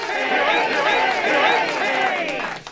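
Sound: crowd cheering sound effect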